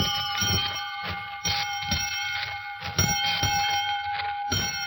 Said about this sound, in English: Well, that bell calls class to order, Quiz Kids, and here's your first question.